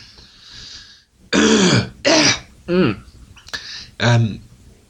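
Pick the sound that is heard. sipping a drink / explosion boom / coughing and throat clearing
coughing and throat clearing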